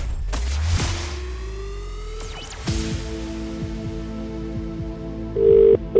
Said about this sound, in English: hopefully it's your phone that is going to ring